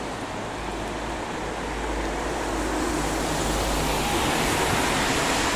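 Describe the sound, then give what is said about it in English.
A steady, broad wet hiss of car tires spraying through standing water, swelling slightly as traffic passes, with a low rumble of engines underneath and no voices. “the sound of cars going through water.”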